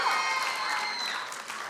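A short burst of audience applause, a dense, steady wash of clapping hands that holds at an even level for under two seconds, with faint cheering mixed in.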